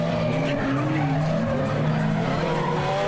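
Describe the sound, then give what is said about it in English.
A car drifts sideways with its rear sliding, giving a loud, continuous tire squeal. The screeching pitch wavers over a steady engine roar, sustained for the whole few seconds with no voices. “Drifting is the art of sliding the back of a car.”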